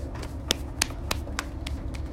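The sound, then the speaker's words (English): A left hand pats down the right leg during an exercise routine, in a quick, fairly steady series of about seven soft slaps, over a low background hum with no talking. “And with your exhale, pat out your right leg with your left hand.”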